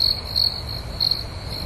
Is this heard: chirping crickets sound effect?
yes